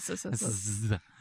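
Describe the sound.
A voice imitates a snake, stretching a sharp, sustained hiss for nearly a second over a voiced tone after a short burst at the start, then falls quiet.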